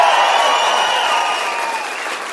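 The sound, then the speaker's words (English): A large church crowd cheers and applauds loudly and continuously to greet a new Brussels, Belgium campus: a dense wash of clapping with high whoops and shouts on top, fading only slightly toward the end. “And at every campus, can you guys make some serious noise, like the kind of noise that they would hear on the other side of the ocean as we say hello to our brand new Brussels, Belgium campus.”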